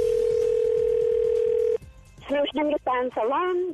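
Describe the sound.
A steady electronic ringback tone hums for just under two seconds on an outgoing prank phone call to a salon, then cuts off as someone picks up and a voice begins speaking over the line.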